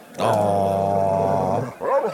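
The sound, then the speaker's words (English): An old dog lets out one long, drawn-out, steady bark, loud, then a shorter wavering yelp right after. No one is talking. “That's Basil within the past year when he still had a bark. That's his old man bark.”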